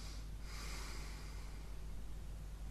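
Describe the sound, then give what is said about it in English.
A sleeper lets out a single rough, snorting gasp and resumes breathing after thirty-three seconds without breathing during the night, the breathy rush trailing off over a steady low hum. Quiet, with no talking. “Thirty-three seconds later, and … finally starts breathing again.”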